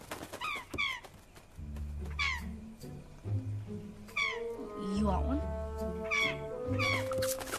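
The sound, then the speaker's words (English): Seagulls call in repeated bursts of sharp, descending, loud squawks, while a person speaks briefly over a steady low rumble. “Have you ever fed seagulls? Check out this video we have about sea.”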